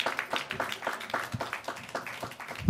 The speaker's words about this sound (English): Clap for my mama. And child abuse.